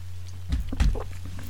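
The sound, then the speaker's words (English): A quick sip of coffee: a couple of short, soft slurping bursts followed by a faint swallow, all over a steady low electrical hum with no talking. “Now I'll pause again and have another sip of coffee.”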